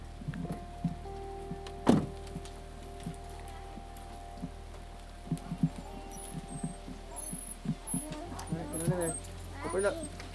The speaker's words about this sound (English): We made our break back for the house just as it started to hail, the ice balls clattering all around us